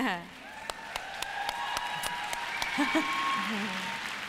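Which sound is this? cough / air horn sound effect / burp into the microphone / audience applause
audience applause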